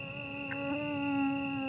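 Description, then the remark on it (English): A thin, high-pitched mosquito whine hums steadily for under two seconds, growing slightly louder as the mosquito draws near, with no voices present. “You'd be hard-pressed to find someone who welcomes the sound of a mosquito drawing near, but, annoyance aside, they're the vectors of all manner of maladies that plague human populations worldwide.”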